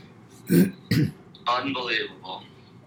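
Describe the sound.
Two quick, explosive sneezes in close succession, sharp and noisy, followed by a short voiced, wavering vocal sound as someone recovers.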